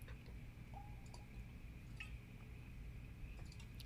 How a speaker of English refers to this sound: I'm going to take a drink of water real quick.